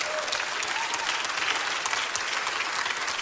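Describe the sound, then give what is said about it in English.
Steady applause from an audience during a worship service, a dense, continuous patter of many hands clapping at an even level throughout, with no voices standing out. “You guys are clapping now.”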